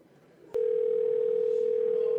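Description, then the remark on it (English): A click, then a steady, unbroken electronic tone from a telephone line on an outgoing call, heard clearly and alone with faint background noise. “Okay, it's ringing.”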